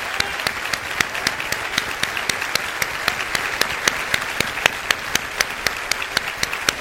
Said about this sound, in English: Do you mind now giving them a thunderous applause? Because, come on. Come on. Come on. Keep standing. Come on. Keep standing. Keep standing. Keep standing. Come on. Thunderous applause. Thunderous applause.